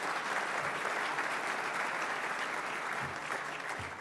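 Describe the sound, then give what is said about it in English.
A crowd applauds steadily for the event's sponsors, dense overlapping hand claps filling the whole stretch at an even, fairly loud level with no voices. “So if you don't mind, a big applause for our sponsors,”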